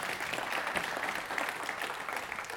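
Steady applause from an audience, many hands clapping in a dense, continuous patter that holds at an even level throughout, moderately loud with no voices standing out.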